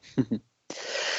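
sneeze

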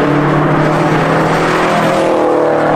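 car engine revving

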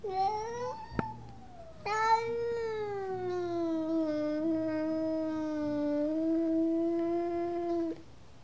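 cat yowling

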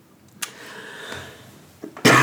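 sneeze

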